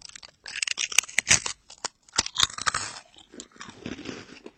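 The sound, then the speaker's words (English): Loud, crisp crunching as food is bitten into in an ASMR video by two famous celebrities in the Philippines, followed by a run of sharp cracking chews that settle into softer, wetter mastication, with no talking. “I sampled some ASMR videos around the region, such as this video by these two famous celebrities in the Philippines. We're gonna take a bite.”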